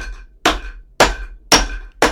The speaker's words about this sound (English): We're going to start smashing some ice now.